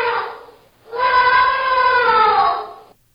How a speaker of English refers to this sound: Yep, that's an ungulate called an elephant.